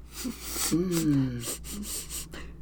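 A person sniffs things repeatedly in short, breathy bursts of air, with a brief voiced gasp or moan in the middle; no words are spoken.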